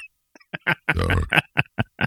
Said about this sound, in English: I'm in the burp penalty box.